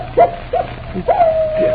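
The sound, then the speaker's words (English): A wolf dog, Moran's dog, howls in a long, wavering tone, broken by a few short yelping rises before settling into a sustained wail, with a low steady hum underneath and no talking. “Captain Drummond, that howl is... It's the wolf dog.”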